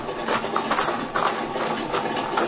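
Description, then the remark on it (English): A small airplane engine idles in a field with a steady, rough mechanical drone and a faint rhythmic chug, holding at one even level throughout with no voices. “Well, here's the good old ship, Speed. Now, look, she's still idling.”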